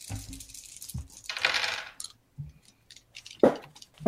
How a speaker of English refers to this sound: Well, I'll roll my dice,